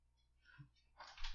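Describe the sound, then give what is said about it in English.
A single sneeze: faint breathy intake sounds, then a sudden harsh, hissy burst near the end. Quiet overall, with no talking. “Bless you.”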